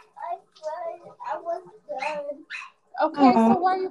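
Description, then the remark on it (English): A young child cries in a run of short, high, wavering sobs separated by brief gasps, building to a louder, strained wail at the end. “Okay, so why are you crying?”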